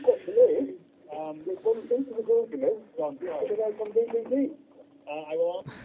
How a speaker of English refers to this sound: Can you just turn the volume off on us in the background, because there's loads of echo.